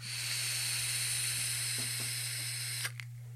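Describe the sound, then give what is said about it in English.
A Twisted Timmy's vape coil fires with a steady sizzling hiss and a few faint crackles, then cuts off abruptly with a small click near the end. A low electrical hum runs underneath. “The crackle is good. I've been having so much luck with Twisted Timmy's coils lately.”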